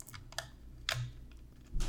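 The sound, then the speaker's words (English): A paper clip, pushed through a hole drilled in a camera's label area, presses a small reset button, making several sharp little clicks at irregular intervals. It sounds fairly quiet over a low background hum, with no talking. “And they say if you drill in that area, which you can see I already did here, and then get the paper clip, you can, you kind of have to shimmy it around, but there's a button.”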